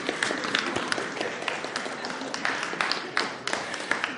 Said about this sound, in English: Ready? Are you ready? 3, 2, 1, go. Give them some encouragement. Cheer them along. Go on, give them.